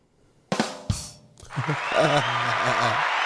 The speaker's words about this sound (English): Hand claps.